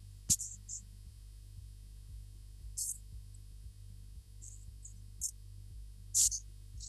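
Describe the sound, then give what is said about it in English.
A dropped phone line: a faint, steady low electrical hum with a few brief, sharp high-pitched chirps and crackles scattered through it, and no voices. “Oh, I think that line is dropped.”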